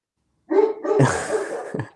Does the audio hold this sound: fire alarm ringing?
no